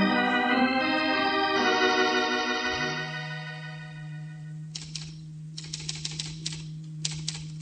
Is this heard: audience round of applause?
no